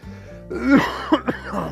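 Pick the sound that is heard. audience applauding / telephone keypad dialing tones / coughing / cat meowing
coughing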